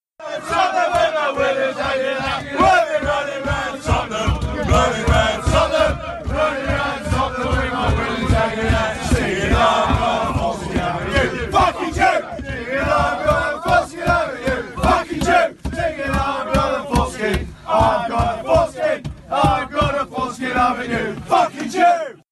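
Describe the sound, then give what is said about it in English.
A large group of male West Ham soccer fans, facing Tottenham supporters, chants loudly and rhythmically in unison on a train, with a steady pulsing beat and occasional shouts, the crowd singing continuously throughout. “In mid-April, fans of West Ham, facing Tottenham supporters, started chants on trains, a continuation of incidents that were going on in the stadium.”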